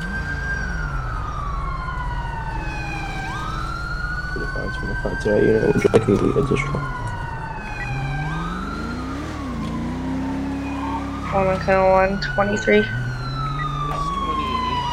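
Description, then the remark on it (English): An outdated video game siren on a state trooper traffic enforcement police car wails in repeating rising and falling sweeps, loud, with a deep engine rumble beneath and a few brief bursts of clattering noise partway through. “I've been meaning to change the sirens, because the sirens are kind of outdated.”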